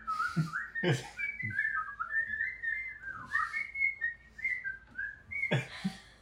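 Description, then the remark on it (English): Warbling human whistles imitate bird calls, sliding and chirping in a continuous string of overlapping notes, with a few breathy bursts between them. The whistling is fairly loud, with no talking. “It's just a cacophony of whistles.”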